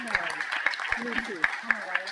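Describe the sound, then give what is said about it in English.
Audience applause for panelists: a steady wash of clapping with evenly spaced sharper claps standing out, moderately loud, with voices murmuring underneath. “So can we give our wonderful panelists a nice round of applause?”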